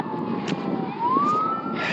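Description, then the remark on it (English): A park police car siren wails in a single slow rising sweep, moderately loud, as the officer pulls someone over in a park, over steady outdoor background noise with no talking. “That was the park police siren.”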